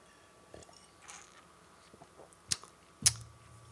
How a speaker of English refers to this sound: I'm gonna have another sip of this beer I can't taste, then I'm gonna give you a couple of brief notices.